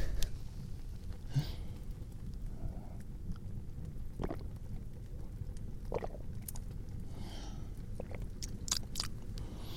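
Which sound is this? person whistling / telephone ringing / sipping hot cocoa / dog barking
sipping hot cocoa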